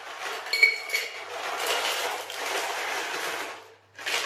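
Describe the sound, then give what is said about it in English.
Nearly all the ice for a cocktail is added: ice cubes clatter and clink into a metal cocktail shaker, a steady rattling jumble of bright knocks that pauses briefly near the end before one more scoop tumbles in. “So that's nearly all the ice in the cocktail shaker.”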